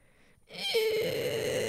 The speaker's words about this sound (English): Okay, this is the sound of the sun. Ready, guys?